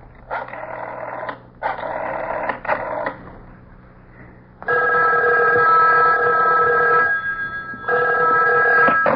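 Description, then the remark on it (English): A telephone rings as a call goes to a front desk: two short buzzing bursts, then a long, loud electronic ring, a brief pause, and another ring starting. No one speaks. “I made a grab for the phone.”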